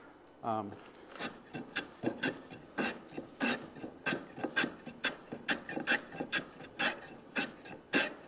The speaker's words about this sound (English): If you find that the tool is too aggressive and you can't see if you're taking too much wood off somewhere, slow down, use another tool, and just sort of slow it down, kind of smooth it out so you can see it better.